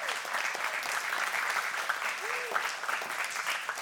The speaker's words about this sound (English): Can we just give them a round of applause today?